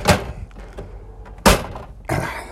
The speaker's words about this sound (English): Now, whether you're friend or foe, whether your neighbors are complaining, I'm slamming my door. And I am.